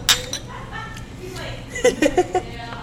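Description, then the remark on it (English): Pint glasses of beer clink together sharply once near the start in a bright toast, followed by a few short bursts of voices and chuckling. “But the ocean's not beer, and I'm not a duck, so let's drink to these pints and get messed up. All right. Cheers to that.”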